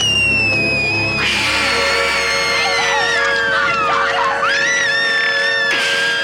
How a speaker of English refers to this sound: Now, if you've watched the documentary Wolfman Got Nards, you'll know they had to recut that scene because the girl screamed too loud. The actor that played Phoebe, she was really terrified.